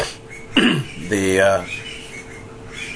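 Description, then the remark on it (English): Two loud, harsh squawks from raucous birds arriving in bamboo in springtime, a short scratchy one followed by a longer, rising, nasal call, with quiet background hiss in between and after. “The raucous birds arrive in the bamboo.”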